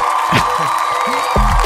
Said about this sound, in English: That deserves a round of applause right there.